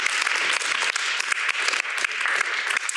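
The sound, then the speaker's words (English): An audience applauds Dr. Nicholas, director of the National Portrait Gallery, many hands clapping in a dense, continuous patter that stays loud and even for the full three seconds, with no voices over it. “Let's give Dr. Nicholas a round of applause.”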